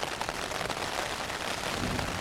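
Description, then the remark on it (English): Heavy rain pounds steadily on a tent pitched at a tent spot on a hiking trail, a dense, unbroken hiss of patter spread across the whole range, loud and even for the full stretch with no voices. “It rained for a little while, but not nearly this hard while we were out hiking.”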